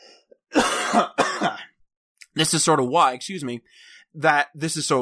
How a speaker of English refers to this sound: So this is sort of why I'm going to cough now.